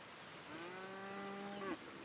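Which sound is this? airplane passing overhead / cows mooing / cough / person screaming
cows mooing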